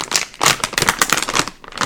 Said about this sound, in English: Okay, I'm gonna open the bag. Moment of truth.